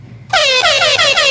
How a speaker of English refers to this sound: Air horn.